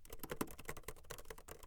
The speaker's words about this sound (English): I can look it up. Like, sounds of typing.